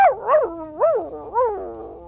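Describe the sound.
A voice imitates the puppy Ronya yelping in pain as a creature swings its arms wildly and slams across the area: four quick, whiny cries that rise and fall in pitch, fairly loud, over about two seconds.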